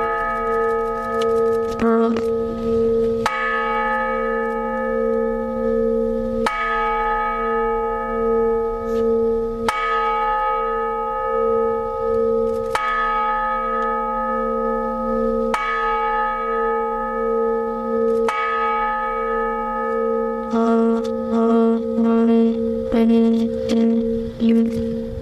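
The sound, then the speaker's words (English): A large memorial bell tolls slowly and steadily, each loud strike ringing out with a long humming decay before the next, with a quicker flurry of strikes near the end. “but one of them that I will remember because of its infancy, starting through succession and success, is the Honor Bell Foundation here locally.”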